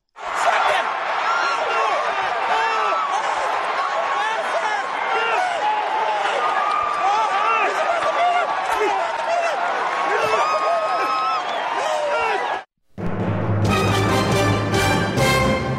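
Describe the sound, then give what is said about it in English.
A loud, continuous roar of crowd cheering and excited shouting from many voices at the end of a horse race at the Belmont, with Rob Gronkowski cheering for his horse, cutting off abruptly near the end, followed by a few seconds of a different, more tonal sound. “There was a Rob Gronkowski cheering for his horse at the end of the race at the Belmont.”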